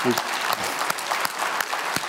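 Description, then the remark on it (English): An audience applauds, a steady wash of many hands clapping with sharp individual claps standing out. A voice is briefly audible at the very start. “You know who we clap for?”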